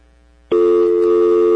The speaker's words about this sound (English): Oh, dial tone.